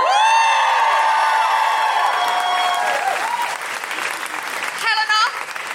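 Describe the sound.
A crowd claps steadily and loudly while voices cheer over it, one long sustained whoop sliding downward, then a fresh burst of shouting cheers near the end.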